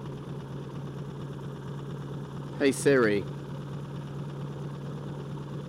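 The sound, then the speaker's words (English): A steady, low engine drone fills the whole stretch, the constant hum inside an airplane cabin during an interview with Max Fosh, who is on board the plane. A voice briefly speaks a couple of words over it partway through. “Bear in mind, he's on a plane. I couldn't hear what he was saying.”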